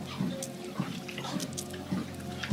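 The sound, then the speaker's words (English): Steady gulping as someone drinks water, about five swallows at an even rhythm, fairly quiet, with small wet mouth sounds between them and no talking. “So, gonna take some water as well.”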